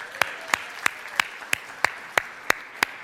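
An audience claps in a steady, even rhythm for two people invited back to the stage: about nine sharp, crisp claps in three seconds, set over a soft wash of background crowd noise.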